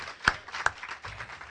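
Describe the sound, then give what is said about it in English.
Two sharp hand claps ring out, followed by a softer, scattered patter of clapping as an audience starts to applaud both debaters at the end of a debate. “Can we give both the debaters a hand clap today?”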